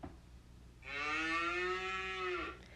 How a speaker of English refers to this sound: Exactly. If you guessed a cow, you're correct. And if you didn't, better luck next time.